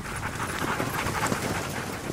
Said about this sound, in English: Then, is it dogs breathing? Under one of the dim floodlights over the running track which surrounds the pitch, there's a flash of a team of dogs and a musher.